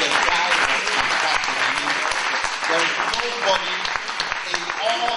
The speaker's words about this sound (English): Look, Abraham was a great guy. Why don't you give Abraham a clap of hands?